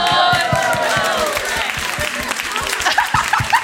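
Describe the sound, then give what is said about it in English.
A room full of people applauding, a dense, steady patter of many hands clapping, mixed with excited cheers and shouting voices that rise and fall throughout. “A room full of people applauding you.”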